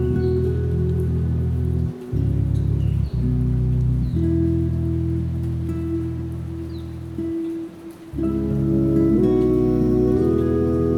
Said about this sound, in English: Be here in the rain and invite yourself to recognize each of the blessings.